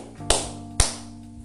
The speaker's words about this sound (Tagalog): Pangatlo, tubig o ulan. Ilang palakpak mga bata? 3 palakpak.